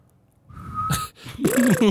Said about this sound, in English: gave them things that make noises, uh-huh. and was like, all right, today we're going to record Jimmy on the recorder, Grace on the marimbas, oh, and Sharon blowing a whistle.